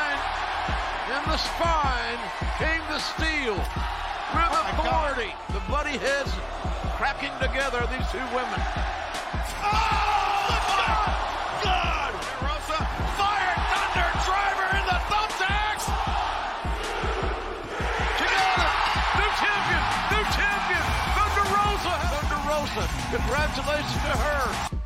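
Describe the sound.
Heavy thuds of bodies hitting a wrestling ring land again and again, some clustered, over a loud, constant crowd roar with cheering voices throughout.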